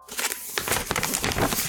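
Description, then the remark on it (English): Wrapping paper crinkles and rustles without pause as someone is wrapped up like a present, a dense, bright crackling with many small sharp snaps running through it. No voices are heard. “And would you like me to poke holes in the wrapping paper so you can breathe?”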